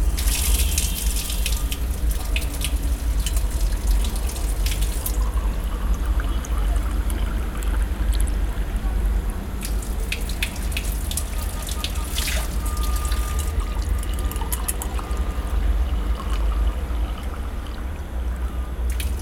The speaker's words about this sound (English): So what you just heard was actually, of course, water flowing at a çeşme or a fountain in the square of Üsküdar on the Asian side of Istanbul. And this fountain really stands in the center of the square